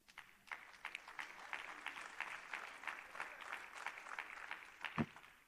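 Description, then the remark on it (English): An audience claps steadily throughout, a dense mass of hands with irregular sharp peaks and one louder clap near the end; no one speaks over it. “I got to have some water still clapping here.”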